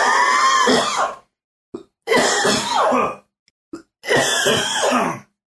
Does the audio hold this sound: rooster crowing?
no